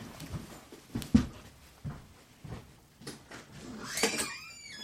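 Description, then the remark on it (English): A dog runs up to the door and barks, a short, sharp bark near the end following scattered thumps and knocks, all fairly quiet with no talking. “He runs up the door and barks.”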